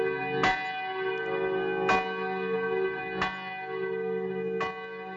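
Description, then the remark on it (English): A church bell tolls four times at a slow, steady pace in the distance, each strike ringing out with a long, humming resonance that overlaps the next, heard with no voices. “And as soon as those words crossed his mind, he heard in the distance the ringing of church bells.”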